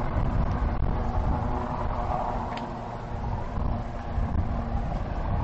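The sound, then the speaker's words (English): A loud, steady low-pitched mechanical roar of a helicopter, a continuous churning drone with a faint whine above it, holding level throughout with no voices. “In all seriousness, that could be a Royal Helicopter about to land. I think it might be. It's very, very loud and very, very near, isn't it?”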